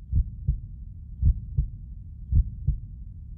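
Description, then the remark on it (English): A heartbeat heard through an Eko digital stethoscope: low, muffled lub-dub thumps in three steady paired beats, with soft rumbling between them and no voices. “When you hear with Echo's digital stethoscope technology for the first time.”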